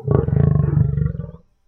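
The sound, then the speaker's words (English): A Veronin tiger, a white and black striped big cat of Verhulgard, lets out a single deep, rumbling roar with a throaty, pulsing texture, holding loud for about a second and a half before cutting off into silence. “Seriously, this is probably the most majestic of Verhulgard's big cats.”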